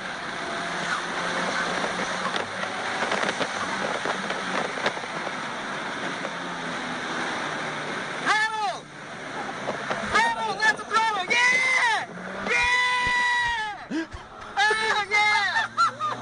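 Loud, steady engine and road roar from inside a race car, with people laughing and whooping over the noise through the second half.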